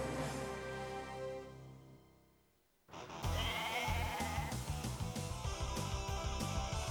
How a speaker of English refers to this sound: Come on. Come on, goat. Doesn't want to go.